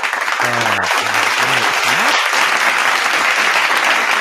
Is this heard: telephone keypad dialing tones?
no